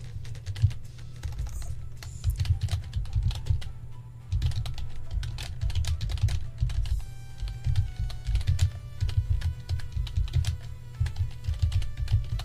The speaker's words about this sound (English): If you're wondering what I'm typing, you can hear me. Right there.